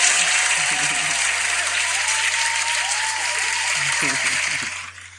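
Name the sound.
clapping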